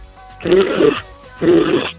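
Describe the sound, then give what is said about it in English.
A person makes two loud, rough, grunting bursts in imitation of a rhino, each lasting about half a second, separated by a short pause, with a raspy, breathy low-pitched tone. “And make a rhino noise before you leave.”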